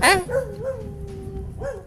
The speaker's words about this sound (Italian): E qui stanno abbaiando perché vogliono.